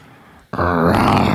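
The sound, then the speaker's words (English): After a brief quiet moment, a man lets out a loud, throaty imitation of a lion's roar, a sustained guttural growl that swells and holds. “Give me your roar.”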